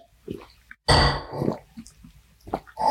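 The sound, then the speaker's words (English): Wet mouth sounds of sipping and swallowing water: a soft slurp, then a louder, noisy gulp, followed by a few small clicks and another swallow near the end. No talking. “Okay, so just going to take a sip of water. Glug, glug.”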